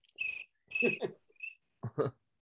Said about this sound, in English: Hey, those crickets are losing their minds. They're cheering as loud as they possibly can.